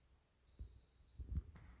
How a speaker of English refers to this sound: There's my Instapod beeping in the background, but I didn't stop it.